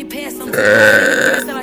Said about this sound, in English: Ooh, got a burp.